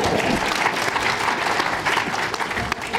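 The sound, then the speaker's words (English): A few people clap in a steady, unenthusiastic patter for about three seconds, a moderate wash of applause that neither builds nor fades much. “That was a desultory clap,”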